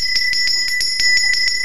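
A bell rings rapidly and repeatedly, about ten quick metallic strikes in a steady rhythm, loud, each hit blending into a continuous shimmering ring with no voices.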